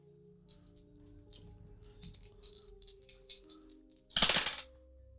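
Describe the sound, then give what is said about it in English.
Two dice rattle with a run of light, irregular clicks, then land in a louder, brief clatter near the end. No one speaks. “Now you're only rolling two dice.”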